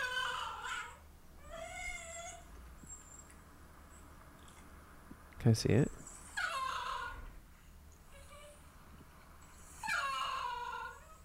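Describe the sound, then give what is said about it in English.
A Basenji dog yodels in several short, warbling bursts, its high wavering calls rising and falling with pauses between. A person briefly speaks midway through. “So I am a Basenji. African barkless dog.”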